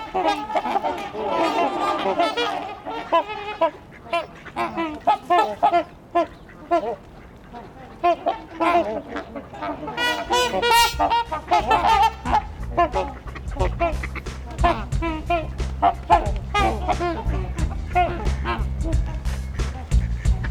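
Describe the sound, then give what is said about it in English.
A dense chorus of trumpeter swan calls, overlapping honks and quacks from a flock of about 125 swans, roughly a third of them young, continuous and busy, with a low rumbling background building in the second half. “You can hear some quacking too, if not worse.”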